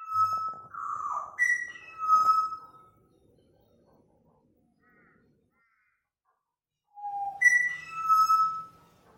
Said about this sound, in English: he has sent us a sound clip of the butcher birds that live just across the course at their house. He said they sit on the balcony and sing